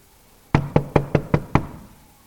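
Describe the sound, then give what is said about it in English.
Six sharp knocks on a wooden door in a quick, steady rhythm, fairly loud, each with a short resonant thud, with no voices. “Well, generally, they come to the house and they knock.”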